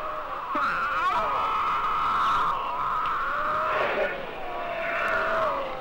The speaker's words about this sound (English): Flies buzzing round the lions.